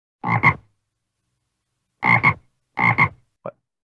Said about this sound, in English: Sound a frog makes.